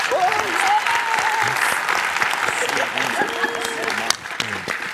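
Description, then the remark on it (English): An audience applauds the panelists steadily for about five seconds, a dense, even wash of many hands clapping, with a few faint voices and whoops mixed in beneath. “Can we give a round of applause to our panelists?”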